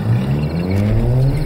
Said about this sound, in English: The car is luckily a push start, and I'm screeching out of my driveway even as the creature claws the exterior.